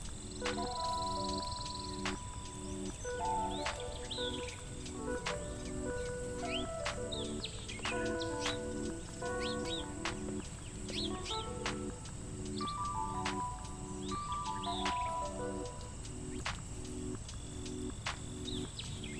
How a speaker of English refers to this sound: It occurs to you how the birds have chirped the same song for months, years, decades, centuries, millennia.